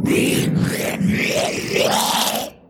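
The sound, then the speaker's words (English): A person imitates a bear's roar with a long, rumbling, growly voice that rises and falls in a few surging swells, loud and sustained for over two seconds before cutting off. “Can you roar like my bear friend here? And he points to his bear. Give me a roar.”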